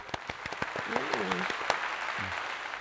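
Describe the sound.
A burst of applause for a speaker who has just published a first book: dense, steady clapping with a few sharper individual claps standing out, and brief voices calling out over it, holding at an even, moderate level throughout.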